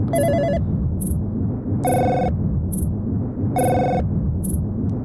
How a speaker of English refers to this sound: Office. I think I remember this one. This one was like a story. There was a story to this. It's like, it sounds like an office phone in a storm or something.